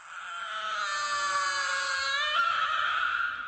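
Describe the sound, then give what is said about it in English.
A robot baby, just switched back on, trembles and screeches loudly and continuously, a shrill, wavering electronic wail with a bright harmonic edge that holds steady for several seconds, without any talking. “Instead, she scooped up little brother and turned him on again. He trembled and screeched louder than ever.”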